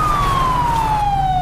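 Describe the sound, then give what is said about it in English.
A police siren wails loudly, its steady tone sliding slowly downward over a low engine rumble, with no voices present. “If you're stopped, please turn off your siren.”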